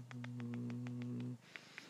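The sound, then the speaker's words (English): A male cat purrs steadily while nuzzling, a low rumbling drone with a quick rhythmic pulse, then the purr stops and a couple of brief, faint higher sounds follow. “I'm forming a bond with a cat. Hey. He's purring and meowing.”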